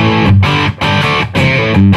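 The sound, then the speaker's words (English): A crunchy, overdriven electric guitar played through the amp's crunchy channel plays loud, gritty chords in strummed bursts with two brief breaks between them, rich low-end thump under a buzzing, saturated top. No one speaks. “So now we're going to go to my crunchy channel.”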